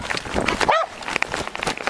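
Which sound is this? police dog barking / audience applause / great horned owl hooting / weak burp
police dog barking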